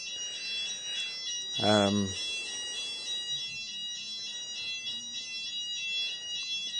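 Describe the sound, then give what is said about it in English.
A building fire alarm, going off for nearly an hour, rings steadily throughout, its shrill high-pitched tones pulsing in a continuous pattern, with a brief voice-like sound cutting in near the start. “It has been reported, and they're attempting to get someone out to silence the alarm.”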